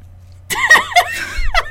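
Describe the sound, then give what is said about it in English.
A cat under a blanket licking her toes right next to the microphone: a quick series of four or five wet, smacking licks, fairly loud and irregular, with no talking over them. “Licking her toes super loud right next to the microphone.”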